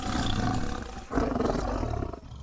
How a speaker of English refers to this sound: It's a great honor to meet such a magnificent lion as yourself, sir.